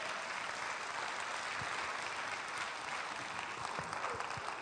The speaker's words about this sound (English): If you'd like to clap to make him comfortable, that'd be fine.